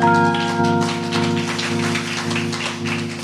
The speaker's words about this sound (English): Can we give God a hand clap of praise for her?